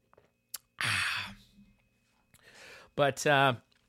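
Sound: sipping coffee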